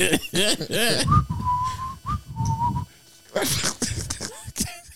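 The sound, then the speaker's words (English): A short, clear whistled melody of a few sustained notes, a priest whistling through a church, rises out of animated talk, with voices and laughter-like chatter returning right after. “He over there grinning every Sunday. Whistling through the church.”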